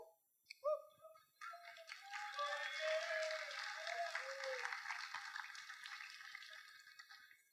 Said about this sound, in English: Man, let me get a drink of water.